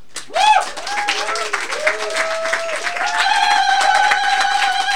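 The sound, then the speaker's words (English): An audience applauds steadily with dense, continuous clapping, mixed with whoops and cheering voices that rise and swell over the applause, loud throughout. “Keep applauding, keep applauding, keep applauding, keep applauding, keep applauding.”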